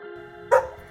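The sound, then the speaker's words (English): A service dog named Cooper lets out a single sharp, loud bark at the Jacobs Williams Pavilion, breaking through a quiet indoor hum, with no one speaking. “Dad, look, a dog.”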